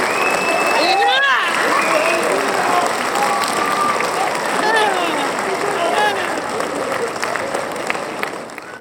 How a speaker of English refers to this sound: can you make them applaud for me again, Joe? I need it. I need that.